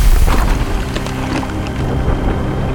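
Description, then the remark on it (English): A heavy thunder strike following lightning over Nethermere Manor rolls out as a loud, deep rumble, sustained for a few seconds with crackling bursts scattered through a dense wash of stormy noise. No one speaks. “We cut to the interior of Nethermere Manor now, just as that thunder strikes, and the sound of heavy, chubby raindrops begins rattling off of the old decrepit roof.”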